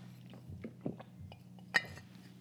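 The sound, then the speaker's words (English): Soft mouth sounds of someone sipping water from a glass, with small wet gulps and a single light clink of glass against a hard surface partway through. “I will do this with my water. I'll be like, every sip I take attracts me abundance.”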